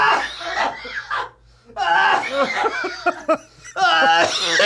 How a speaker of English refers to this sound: Please don't cough toward me. Oh, COVID.